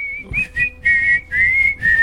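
A whistled ringtone melody, the whistle from the film Kill Bill, plays clearly, a bright tune in four short phrases with sliding pitch changes and brief gaps, with soft low background noise underneath.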